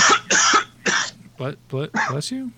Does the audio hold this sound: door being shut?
no